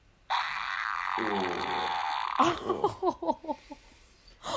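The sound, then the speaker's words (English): A long, loud buzzing fart holds steady for about two seconds, then breaks into a sputtering run of short, wet pops that trail off, followed by one last brief burst. “Fart number two.”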